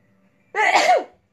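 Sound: a person sneezing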